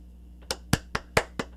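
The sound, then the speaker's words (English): Hand clapping: six sharp, evenly spaced claps in quick succession, fairly loud and crisp, with no voices over them. “That was me clapping.”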